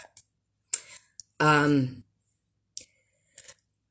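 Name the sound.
sipping a drink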